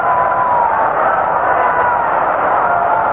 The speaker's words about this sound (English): Lou Gehrig gets a pass, filling the bases, and it brings up Jimmy Fox. Getting a big hand from the crowd.